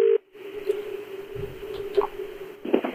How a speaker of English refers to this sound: Okay. Is it ringing? Yeah, it's ringing. That's good. It's not a fake number.